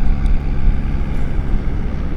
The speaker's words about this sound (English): Oh, if you can hear that noise, I was like, what is that? It's one of those planes,